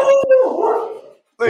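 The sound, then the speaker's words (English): A dog in a house barks sharply and then breaks into a drawn-out, wavering howl, fading out before a brief burst of voices returns at the end. “The dog got riled up.”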